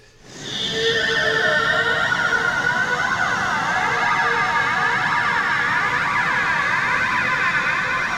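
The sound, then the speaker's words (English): A synthetic sound effect: a dense hiss of white, cockpit-like noise swells in within a second, then holds steady while a flanger sweeps through it, giving a whooshing, siren-like warble. “So here's where we arrived by adding just a little bit of flanger and some white cockpit sound noise.”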